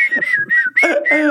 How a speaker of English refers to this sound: Whistle while you work.